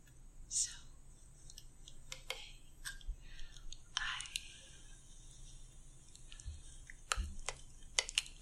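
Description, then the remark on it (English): Soft, wet mouth clicks and smacks in an ASMR video by an ASMR creator pop out irregularly over a faint breathy whisper, each one a sharp, bright tick spread across the high end, quiet overall. “Little clicky sounds in her voice.”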